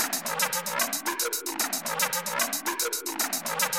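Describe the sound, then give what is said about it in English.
A fast, steady hi-hat loop starting a hardstyle tune ticks out bright, crisp hits several times a second, layered over a busy, buzzy mid-range synth pattern, with no one speaking. “The recipe starts with a random hi-hat loop or something like that.”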